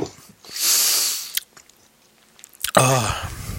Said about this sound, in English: I shouldn't have stopped chewing them, because now we got to eat them all.